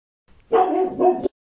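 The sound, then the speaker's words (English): A dog gives a loud bark that runs into a second one, forming a short double woof that lasts under a second, with no talking around it. “If your family holidays included roasting chestnuts over an open fire and wrapping up in warm blankets and exchanging presents with your beloved family members, and nothing ever went wrong like the dog barking while you're recording a podcast, leave.”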